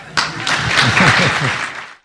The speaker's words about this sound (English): And that gets some applause from the crowd